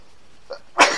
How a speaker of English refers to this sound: oh, Gesundheit. Now, I don't think I've ever done that on the show.